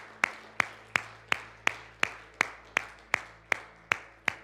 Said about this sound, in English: In fact, we applaud you and encourage you. Let's do that. Let's applaud you, encourage you. Come on. Let's let it louder than that. Louder, louder, louder, louder.